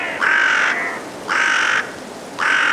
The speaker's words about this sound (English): Five carrion crows head to roost at dusk in Woodchester Park in Gloucestershire, England. Richard Margoshes recorded this murder for the British Library National Sound Archive CD….